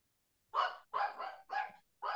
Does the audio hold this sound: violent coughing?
no